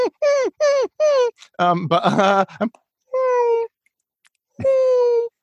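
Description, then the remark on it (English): A person imitates a cat meowing: three quick nasal mews, a strained, wailing stretch, then two longer drawn-out meows with pauses between, loud. “I've done dogs and cats.”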